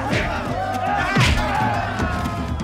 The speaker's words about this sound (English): these sound like cartoon punches to me. I feel like they need to dial it back just a little bit.